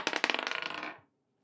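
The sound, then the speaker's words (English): Dice are rolled across a hard table during a tabletop game, a quick burst of rattling clicks that tumble faster and fainter before stopping after about a second. Fairly loud, with no voices. “Try that again. Touching my dice.”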